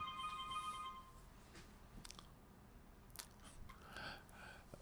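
A faint electronic phone ring sounds briefly at the start, a thin steady tone lasting about a second, followed by scattered soft clicks and rustling handling noises with no one talking.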